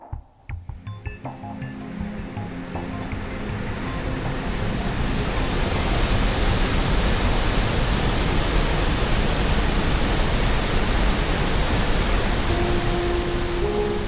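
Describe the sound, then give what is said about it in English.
A loud, continuous roar of ocean waves around the rudder stock of the ship Nave Andromeda as it pulls out of the port of Lagos, swelling over the first few seconds into a dense, steady wash of noise, with the faint low metallic thrum of the propeller fan beneath it. “It was noisy in the rudder stock, between the roaring of the waves and the metallic thrum of the propeller fan.”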